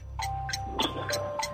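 A 60-second game clock in a trivia quiz game ticks steadily in a quick, even rhythm, five or so sharp ticks over a low background hum, with faint tonal beeps threading between them.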